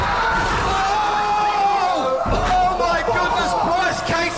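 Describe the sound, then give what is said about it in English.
A portable toilet with a man inside is shoved over and crashes down in one heavy, hollow thud midway through, surrounded by a crowd's excited shouting and cheering. “It is time to push over the Portaloo.”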